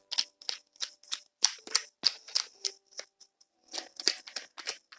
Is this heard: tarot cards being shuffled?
yes